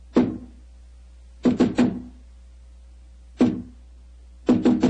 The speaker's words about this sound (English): Who knocks? Number 7. Give the password.